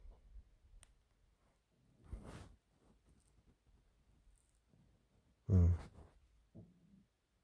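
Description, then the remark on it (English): A dog snoring next to a person at night: a few slow, breathy rasping snores with long pauses between, one noticeably louder and rougher than the rest. “You might even hear my dog snoring next to me.”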